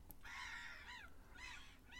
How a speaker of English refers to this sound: Seagulls are out. Shitting everywhere. Little bastards.